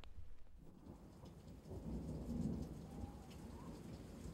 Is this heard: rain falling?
yes